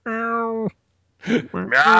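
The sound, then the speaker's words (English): A single drawn-out, steady meow, fairly loud, seemingly a person's voice imitating a cat, followed after a brief pause by more vocal sounds. “Meow, I'm here. Come on, save me.”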